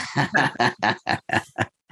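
A pig oinks in a quick run of about eight short, rhythmic grunts, fairly loud, with no one talking over it.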